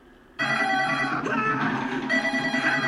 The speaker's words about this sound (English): Get the phone!